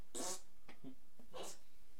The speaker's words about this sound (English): Just kidding. Fart noise is funny.